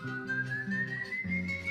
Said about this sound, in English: his insatiable hunger drives him to feast on the remains of his father's body, forever tormented by his guilt and the haunting sound of his own whistling.